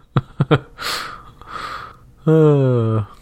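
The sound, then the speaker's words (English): Three quick, sharp splutters in a row, then two heavy gasping breaths and a drawn-out voiced groan. Someone is choking on a drink of water, loud. “Sorry, that was some delicious water right there.”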